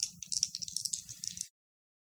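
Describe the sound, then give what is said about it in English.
Dice rattle and clatter for about a second and a half as they are rolled for an Investigate a Mystery move in a game, a dense run of quick clicks with a low rumble underneath, then stop abruptly into silence; the roll comes to 8 plus 2. “Why don't you roll me Investigate a Mystery?”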